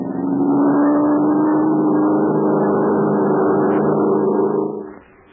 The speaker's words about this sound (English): The plane's playing in a circle. It's getting ready to dive. Now watch me for a signal and give it everything you got. That plane must be brought down.